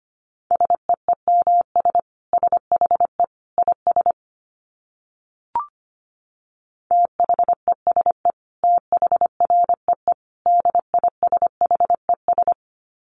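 Morse code sent as a steady mid-pitched beeping tone at a brisk 25 words per minute, short dits and longer dahs in quick groups, with a pause and a faint click halfway through.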